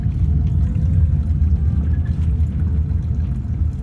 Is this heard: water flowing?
yes